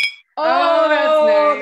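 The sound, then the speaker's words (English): A single bright clink of glasses of bourbon rings out in a toast, followed almost at once by a long, steady sustained voice tone that carries over the rest of the moment. “We have to clink again.”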